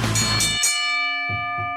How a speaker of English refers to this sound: My phone just went off.